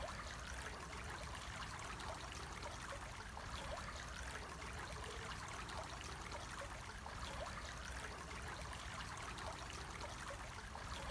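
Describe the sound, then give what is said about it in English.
Water flows steadily along a stream with a sandy bed, a continuous soft rushing and trickling with no pauses, fairly quiet, with no voices or other sounds. “You're facing downstream and the water is flowing past you.”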